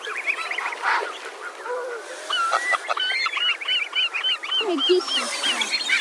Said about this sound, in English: Look, you see all the baby geese. They all notice me. A couple got actual goslings as well. Look at these.